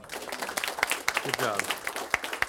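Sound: applause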